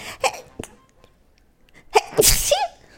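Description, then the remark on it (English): A single loud sneeze bursts out near the end, preceded by a few short breathy catches and quiet pauses as it builds up. “Excuse me. Bless you.”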